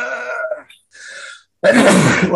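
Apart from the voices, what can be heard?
sneeze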